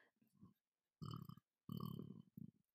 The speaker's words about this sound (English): I had a burp, sorry. It's going to happen again.